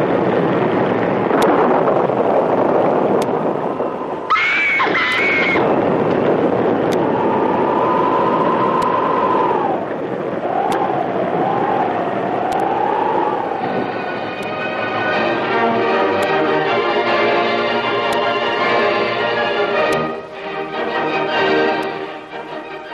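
A constant, loud roar of stormy sea and wind as a huge wave breaks over a ship's storm-lashed deck, with heavy washes of water and high whistling and creaking tones rising and bending over the top. Nobody speaks.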